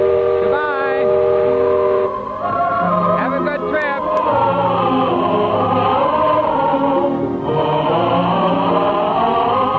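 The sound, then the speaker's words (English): The steam whistle of the riverboat Mark Twain blows loud, a deep, chord-like tone held for nearly ten seconds, wavering in pitch, with a faint rumble underneath, as the boat gets ready to shove off on its maiden voyage. “There goes the whistle.”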